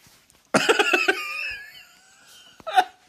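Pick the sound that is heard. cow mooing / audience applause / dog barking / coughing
coughing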